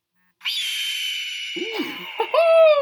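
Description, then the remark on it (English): A red-tailed hawk's call plays as a custom phone text-message tone: a single loud, raspy, drawn-out scream that holds steady for over two seconds before breaking into a shorter, slurred cry. “you'll hear Eric text me and my new custom text tone that took me about 20 minutes to set up”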